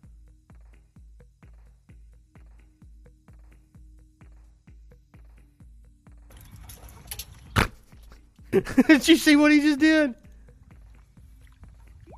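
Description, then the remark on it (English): A puppy doing a doggy paddle through pool water with soft, steady splashing strokes in a quick, even rhythm, followed by a brief rush of louder water and a person speaking excitedly. “This is a puppy taking a swim.”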